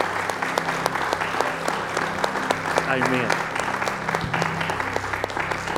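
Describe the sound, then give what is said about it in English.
An audience claps hands in praise and worship of the Lord, sustained, dense applause at steady volume, with voices calling out beneath it and a single spoken word near the end. “Let's give the Lord a hand clap of praise and worship today, please.”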